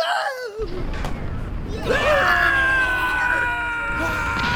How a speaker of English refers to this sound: Bravely, the pirates surge forward to board the Mughal ship. But the storm of musketry is too much. And dozens of them give a Wilhelm scream and fall in the water like in the films.